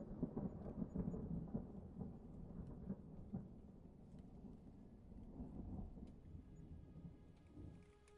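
A thunderstorm with deep, rolling thunder rumbling steadily under a constant wash of rain, heavy at first and easing slightly toward the end, with no voices.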